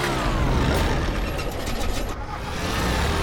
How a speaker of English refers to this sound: What was that? It sounded like the engine died for a second. These old bush planes do stuff like that all the time.